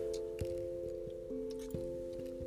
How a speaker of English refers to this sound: Just getting a sip of water.